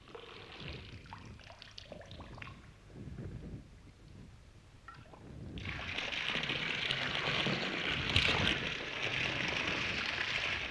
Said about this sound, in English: the hard work of early winter, the work of digging and pipe laying and setting up the tank on top of a hill, that came to an end when the electric pump was switched on. The pump that raises water from the well and forces it uphill to the tank.